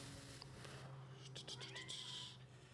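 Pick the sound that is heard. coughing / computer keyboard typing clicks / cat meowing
cat meowing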